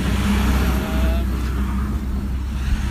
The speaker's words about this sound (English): Just let that traffic go by.